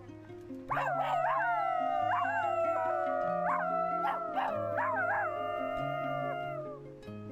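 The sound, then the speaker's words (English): A person gives a long, wavering wolf-like howl that rises and dips in pitch for several seconds, loud, over a steady bed of low sustained tones. “And there are videos that I've seen of people going out in public and howling like animals to try to find other Therians.”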